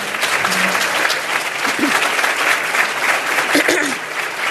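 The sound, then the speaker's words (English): Steady, dense applause from a crowd of people clapping continuously for several seconds for standing leaders and members of community-based organizations, loud and even, with a few faint voices briefly rising beneath it. “And folks, let's give them a round of applause.”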